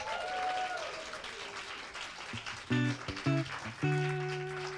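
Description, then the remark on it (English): An audience at a storytelling event applauds the first three storytellers steadily for several seconds, a dense patter of many hands clapping, with a few sustained whoops and cheers rising over it toward the end. “But anyway, can we clap for our first three tellers again?”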